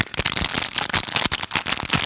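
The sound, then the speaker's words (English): An empty plastic water bottle being crushed and twisted by a child, giving a rapid, irregular run of sharp crinkling cracks and pops for about two seconds, with no voices. “Do you know what an empty bottle of water sounds like when a kid's playing with it?”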